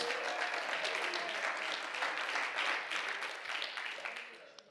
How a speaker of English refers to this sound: Come on, clap your hands and praise God this morning.